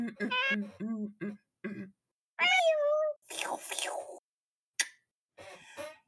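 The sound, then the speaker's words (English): Several cat yowls and meows with sliding pitch, followed by a burst of harsh, noisy hissing, a sharp snap, and a last scratchy hiss, all fairly loud. “Cause it's about to be a cat fight.”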